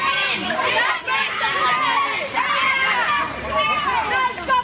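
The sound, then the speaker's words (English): An agitated crowd of relatives and friends shouts over one another outside Grafton Court, yelling at and pushing the accused after they were granted bail, in a dense, continuous roar of raised voices, loud and heated throughout, with no single voice standing clear for long. “His family and friends yelled and pushed the accused.”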